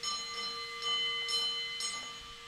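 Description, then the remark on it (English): A mine hoist signal bell rings slowly, with a few evenly spaced strikes over a steady, lingering metallic hum. It is part of a bell signal system that lets hoist engineers communicate with men working thousands of feet underground. The tone is fairly quiet, and no one speaks. “His biggest challenge was memorizing the Morse code-like system of bell signals that allowed the engineers to communicate with the men working thousands of feet underground.”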